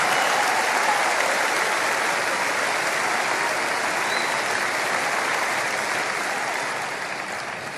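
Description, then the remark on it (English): An audience claps hands in a dense, sustained burst of applause, steady and loud throughout, tapering slightly at the end with no voices standing out. “Clap your hands and say, it's prayer time in America.”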